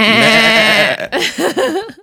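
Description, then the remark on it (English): A sheep bleats loudly in one long wavering call, followed by a few shorter quavering bleats in quick succession. “And David was a shepherd, and he cared for all his father's sheep.”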